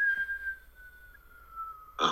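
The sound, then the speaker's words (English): A cartoon-style whistle holds one long, thin tone that slowly slides downward in pitch for about two seconds, then cuts off with a sudden short burst of noise. “It would probably be something from... Roadrunner and Wile E. Coyote. Maybe the whistle.”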